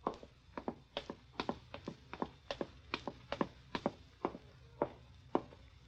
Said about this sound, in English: At last, you brace yourself, open the door, and walk softly to the stairway.